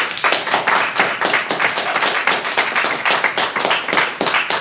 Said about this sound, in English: If you believe that it was Super Mario World, …, please vote for them now with your applause.